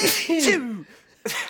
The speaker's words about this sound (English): There's one more coming. Because you're a weak sneezer. Let's be honest.